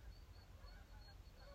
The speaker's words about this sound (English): That's the geese. You know what's crazy, bro? It's in October, bro. Don't they say the birds fly south for the winter? Bro, it's October, man. It's pretty warm out here.